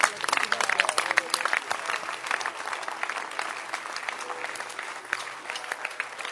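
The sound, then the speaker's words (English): A crowd claps steadily throughout, a dense rattle of many hands forming continuous applause at a fairly loud level, with faint voices mixed underneath. “Can you clap your hands?”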